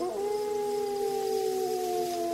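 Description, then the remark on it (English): A Rottweiler in a pen lets out a single low, sustained howl, steady and drawn out with a slight downward drift in pitch, moderately loud with no talking. “It was as if the dog's ears pricked at being discussed, because he let out another low howl.”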